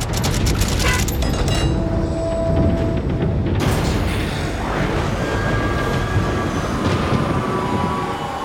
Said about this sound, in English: Slowly, one after the other, the gates shifted and parted.